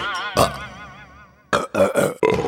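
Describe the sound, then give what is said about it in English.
A long, drawn-out belch rumbles for over a second, followed by a few shorter, choppy burps in quick succession, loud. “So your body gets rid of it by sending it back up the way it came.”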